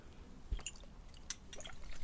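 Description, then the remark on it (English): A short wet splash of a generous slug of liquid poured from a bottle onto skin, dripping down the neck, with a few squishy, slapping bursts and faint drips against a quiet background, no one speaking. “I'm going to stick this on, Rich. You ready? I'm going to go for quite a slug.”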